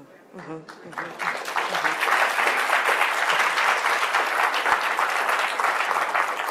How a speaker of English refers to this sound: We need a clap meter for you because you just...